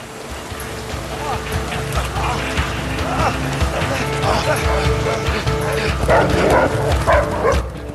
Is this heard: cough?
no